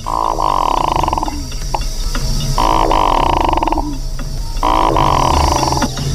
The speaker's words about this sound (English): The Hooded Merganser is a quiet bird, except during courtship, when the male makes this sound.